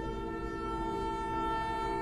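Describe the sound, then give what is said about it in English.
A train rumbles past, its low steady roar filling the whole moment while a sustained, horn-like tone hangs over it. No one speaks. “There's a train passing by.”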